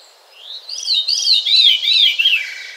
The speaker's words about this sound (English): There's another bird, and then I'll stop. There's a bird in the North Woods called the veery.